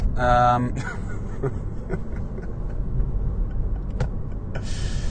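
A car turns in to a car wash, its engine and road noise a steady low rumble, with a brief tonal sound at the start and a few sharp clicks and knocks along the way.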